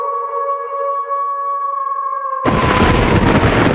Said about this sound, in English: Wow. That thunderclap, though, is... Scary.